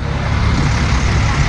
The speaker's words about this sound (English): Oh, it's an armored car.